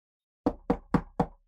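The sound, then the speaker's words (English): Four quick, evenly spaced knocks on a hard surface, fairly solid, each with a short hollow ring, with no voices around them. “And I'll give you the knock and the who is it?”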